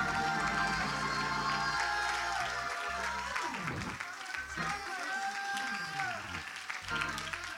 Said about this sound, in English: Oh, if you believe it, somebody clap your hands unto the wonderful name of Jesus.